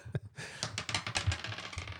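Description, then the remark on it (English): Dice clatter and rattle across a hard tabletop in a quick burst of sharp clicks and knocks, fairly loud, with no one talking. “Chad and I are going to roll or flip that cup”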